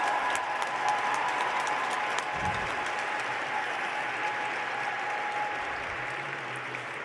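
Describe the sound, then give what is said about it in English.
A large crowd in a full church applauds and cheers continuously, a dense, steady wash of clapping with a few voices rising through it, holding at an even level throughout. “And they're all cheering. Look at the church. It's full.”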